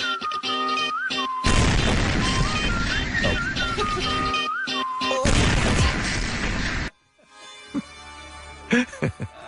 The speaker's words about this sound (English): I like how the song ends when the explosion happens.